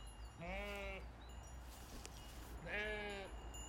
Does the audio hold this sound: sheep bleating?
yes